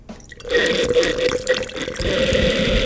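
Wine is poured steadily into a glass decanter, a continuous gurgling, splashing stream that starts abruptly after a brief quiet moment and stays fairly loud throughout.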